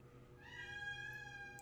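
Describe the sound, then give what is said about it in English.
A single drawn-out meow from Beaker, a cat, clear, rising in pitch and holding steady for over a second with no one talking over it. “There's Beaker the popcorn junkie cat. Deciding to open his mouth again.”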